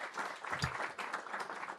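An audience at a Riverside Lisbon church service applauds first-time visitors, a dense steady patter of many hands clapping at moderate loudness, with faint voices mixed in.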